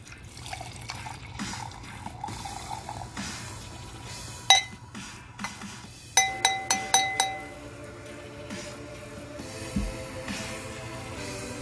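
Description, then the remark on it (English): Wine pours steadily into a glass, with a sharp clink and then a quick run of bright glassy taps partway through. No one speaks. “So let's go right here and pour a glass.”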